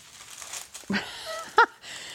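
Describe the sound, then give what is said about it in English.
Rustling and crinkling of parchment paper as half of a batch of dough is scraped off a spatula and pressed onto a strip of it, with a dull thump partway through and a brief squeaky sound near the end. “And I'm going to use my spatula here that I've been scraping the bowl with and put half of the dough on one of these strips of parchment paper.”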